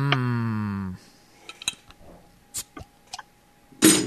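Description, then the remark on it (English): A low droning hum cuts off, followed by several light, sharp clinks of glass bottles knocking together at irregular intervals, ending in a brief rustling burst. “Are you cracking open another bottle?”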